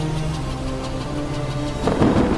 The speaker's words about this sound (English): I mean, you see the sea in a storm. It is waves